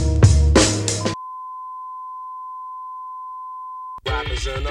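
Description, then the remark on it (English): A steady, single-pitched telephone tone before a voicemail message holds for about three seconds on its own, sandwiched between a short burst of music and a voice that starts talking right after it cuts off. “Hey, yo, society, pick up the phone.”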